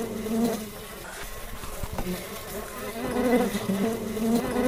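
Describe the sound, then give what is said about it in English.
A steady, dense drone of many bees buzzing around a hive, a continuous hum with slight swells and shifting pitches as insects move around, with no voices present. “So we therefore put the hive over there. As you can see, it's right ahead now.”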